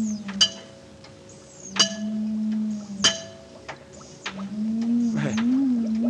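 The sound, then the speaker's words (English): An encephalograph is switched on: a steady low electronic hum with a faint higher whine, broken by sharp clicking pulses of faint amplified alpha rays arriving slowly, roughly every second and a half, like a sci-fi radiation detector ticking. “Notice the faintness of the amplified alpha rays? Notice the comparatively slow rate of pulsation?”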